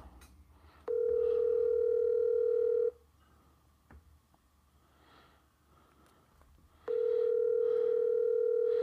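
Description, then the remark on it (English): A telephone rings on the line, two long steady electronic tones about two seconds each separated by a long pause, with no one picking up and only faint rustling and breathing in between. “I guess Frank don't want to answer his phone.”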